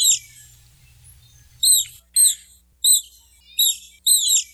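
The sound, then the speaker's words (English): Otter, a semi-aquatic animal, squeaks: five short, very high-pitched chirps in a steady series, each a sharp bright burst with a faint low hum in the background early on. No one speaks. “Well, that very high-pitched squeak is coming from an otter.”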